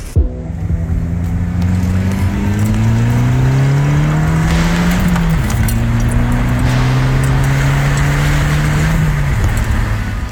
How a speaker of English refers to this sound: Those car sounds were sent in by Scott, his 2013 Dodge Dart.